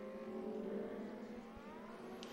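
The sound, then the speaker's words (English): Lamborghini Super Trofeo race cars drone steadily as the field comes down the roller coaster section toward Hogback, a dense blend of harmonic tones that climb slightly in pitch as the cars draw nearer on the circuit. No voices. “So the field is coming down the roller coaster, and they'll go into Hogback, and then they will be taking the green for round four will be later today, of the Lamborghini Blancpain Super Trofeo Cup.”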